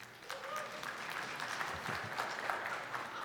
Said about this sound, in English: All applause to the Holy Spirit.